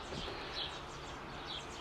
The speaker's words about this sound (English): So, sun's just coming up and birds are whistling. I'm just coming out on the front porch, listening to the birds for a few minutes.